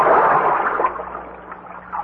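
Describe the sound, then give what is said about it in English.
Water splashes and sloshes steadily as a raft is pushed along over the water by a long pole, a continuous watery rush that fades slightly toward the end, with no voices. “With his long pole, Hans sent us flying over the water”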